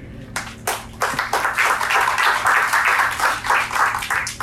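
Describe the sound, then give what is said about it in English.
An audience at Awakening Church bursts into clapping: a few scattered claps at first, then a loud, steady wash of many hands applauding together, with no voices standing out. “You should clap for me.”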